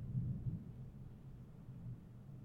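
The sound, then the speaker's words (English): A low, steady rumble of thunder rolls on without a break during a thunderstorm, deep and muffled, fairly quiet with no voices over it. “Y'all enjoy this thunderstorm ASMR brought to you by The Office Chronicles.”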